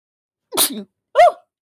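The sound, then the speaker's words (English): A person sneezes, two sharp, loud bursts about half a second apart, the first breathy and hissing, the second more voiced, with silence around them. “I sneeze, excuse me.”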